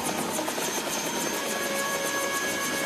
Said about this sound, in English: My driver Foot acknowledges me and I get into the car as I see the helicopter landing safely near the kids.